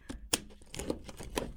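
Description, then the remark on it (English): A book subscription box package being opened: a sharp snap followed by crackling and rustling of cardboard and crinkle paper, with irregular clicks and crinkles and no talking. “You can use that to open it.”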